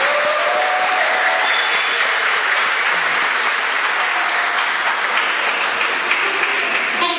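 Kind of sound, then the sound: crowd, audience applause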